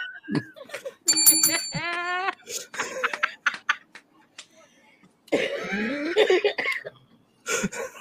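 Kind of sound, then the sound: signal or alarm, bell being rung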